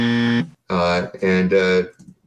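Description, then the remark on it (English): A loud, harsh buzzer blares in four steady-pitched bursts as a hand slaps a button: one long blast, a short pause, then three quick buzzes in a row, ending in a faint trailing noise. “She slaps her hand on the button, and there's a loud buzzing sound.”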